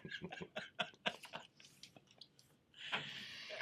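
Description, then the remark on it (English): Crunchy chewing, a rapid run of loud bites and munches that fades to softer mouth sounds, then a final burst of crunching. A man is munching on candy, with no talking. “He's just sitting here munching on his candy card.”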